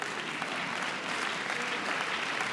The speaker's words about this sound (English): Thank you for the scattered thunder showers of the clapping.